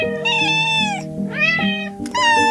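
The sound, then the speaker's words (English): A kitten meows three times in a row, high-pitched and drawn-out, fairly loud, with no talking in between. “And here's 5 seconds of cute kitten pictures for you, just to calm you down.”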